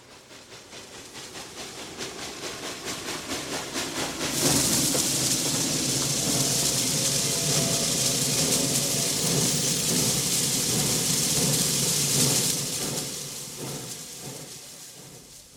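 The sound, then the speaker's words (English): A broad, rushing roar builds steadily, jumps to a loud, hissy peak for several seconds, then gradually fades away, like an aircraft passing overhead. No one speaks. “Plane going over.”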